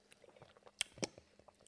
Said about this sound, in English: But cheers. Let me just take a first sip.